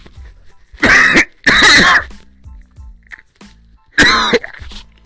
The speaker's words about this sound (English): Excuse me, I'm about to cough. Give me one second.